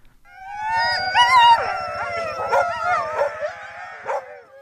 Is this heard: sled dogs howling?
yes